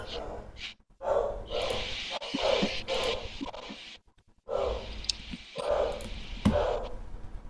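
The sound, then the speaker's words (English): A dog barks repeatedly in loud bursts, with short gaps between barks and a breathy, rough edge to each one, no other voices present. “Oh my goodness, the dog is barking.”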